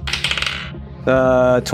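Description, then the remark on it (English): Dice clatter and rattle across a hard table in a quick burst of sharp clicks, rolling a 19 on an athletics check to lift a beam, followed by a steady, buzzy sustained tone. “19 on the dice.”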